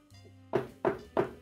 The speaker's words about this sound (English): So, yeah. Knock on the door, you hear.